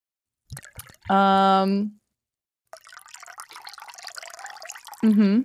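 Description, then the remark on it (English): A little liquid is poured out steadily into a glass for Mr. Two for a couple of seconds, a splashy trickle. Brief voiced sounds come just before it and again as it finishes. “I was pouring out a little bit for Mr.”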